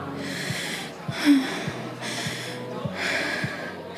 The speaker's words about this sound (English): The two practiced breathing together.